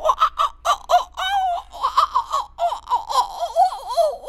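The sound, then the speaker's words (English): A person imitates a monkey as the animal noise in a dice game, with rapid, rhythmic hooting and chattering bursts, a brief wavering squeal in the middle, then more choppy, high-pitched chatter. No one speaks. “That was a monkey with diarrhea.”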